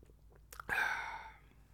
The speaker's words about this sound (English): Quick sip of water, boss. Don't mind me, boss.